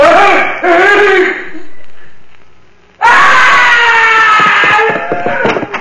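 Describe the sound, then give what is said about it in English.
A loud, shrill scream bursts out, fades into a brief lull, then a second, longer scream erupts and carries on at full strength, piercing. “I heard a scream.”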